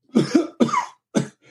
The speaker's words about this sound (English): it's our cough, I guess.